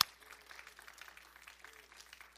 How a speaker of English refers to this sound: Would you give him a big clap offering and thank him?